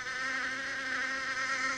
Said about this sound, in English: Wow. Why is there bees on this app? They're really coming at you with everything they got.